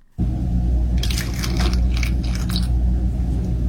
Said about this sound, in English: Do you know what one that was? Pouring milk into an iced latte. Is that right? I think so. I think that sounds really nice. Some ice cubes hitting the side of the glass.